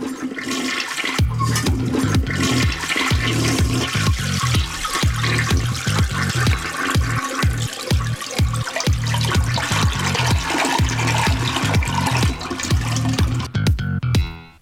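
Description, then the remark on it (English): A toilet flushes loudly, a steady roar of rushing water with pulsing gurgles that carries on for about fourteen seconds before cutting off abruptly. “Water closet Hootenanny. And this will be the theme song.”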